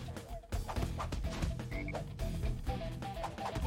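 Deep, repeated croaking from a toad-like creature in a video game, steady and fairly loud, layered over busy game music and effects with no talking.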